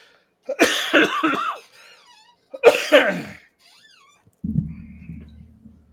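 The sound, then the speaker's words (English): A heavy coughing fit: two loud, harsh bursts of hacking coughs about two seconds apart, each rough and raspy, followed by a low, steady rumbling noise. “It sound like a demon just entered the door.”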